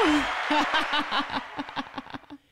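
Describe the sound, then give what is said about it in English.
A canned applause sound effect played by hitting an applause button: a dense, hissing wash of clapping with bursts of crowd laughter mixed in, starting loud and gradually thinning out over a couple of seconds. “Oh, should I hit applause? You need to hit applause.”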